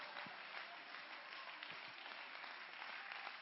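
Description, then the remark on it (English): A church audience clapping their hands to give a shout out unto the Lord, in a dense, steady wash of applause that holds at an even level throughout, with no voices standing out. “Clap your hands and give a shout out unto the Lord right now.”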